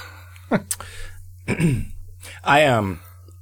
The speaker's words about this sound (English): I looked up what it means if you have to clear your throat all the time.